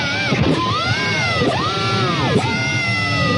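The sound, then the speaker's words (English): Electric guitar notes picked near the pickup, bright and distorted, with the pitch repeatedly diving and swooping back up under the whammy bar, producing a loud, continuous, wailing, siren-like sound. “Yeah, he did a thing where, so if you pick the strings right by the pickup and you put the whammy bar down, you get this crazy sound like, let's see if I can do it.”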